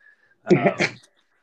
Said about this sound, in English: Go ahead and start. Let me clear my throat.